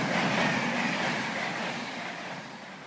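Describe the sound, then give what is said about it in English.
A steady, broad rumble and hiss of two trains at a packed station platform, with people sheltering from the rain and a train delayed. The sound is fairly loud and continuous, easing slightly toward the end, with no distinct voices standing out. “So you had kind of a mixture of two trains.”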